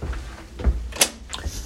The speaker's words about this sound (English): I just got back from work, so you're probably going to hear a lot of doors closing and all that, but ignore it.